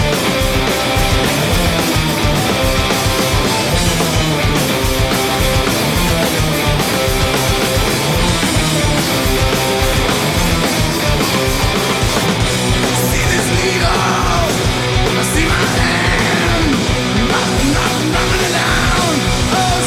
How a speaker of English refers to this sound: It feels like he's always full force with those songs. No matter what, he's going to give you his complete growl, his complete screams. And I thought this was a really, really fun version